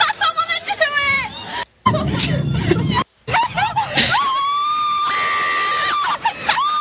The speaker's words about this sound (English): The clip is old and at this point. Find another clip of girls screaming and mix it up. Do a little DJ. Really plug it in there, sample.